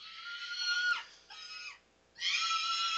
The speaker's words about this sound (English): That's a stupid scream, though.